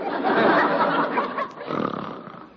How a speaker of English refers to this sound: Good grief, how that man can snore.